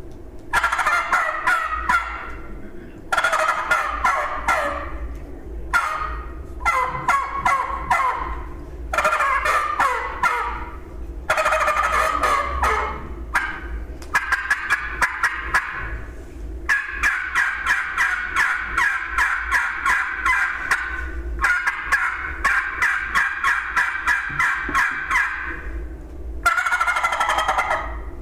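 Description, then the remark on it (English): A turkey gobble made on a tube call, sounding as repeated bursts of rapid, rattling, high-pitched gobbling, loud and without any talking, with brief pauses between the calls. “Any questions on that tube call?”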